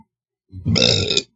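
A single loud, drawn-out burp lasting under a second, close to the mic, with a rough, croaky tone and no talking around it.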